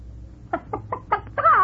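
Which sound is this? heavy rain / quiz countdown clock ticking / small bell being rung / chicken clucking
chicken clucking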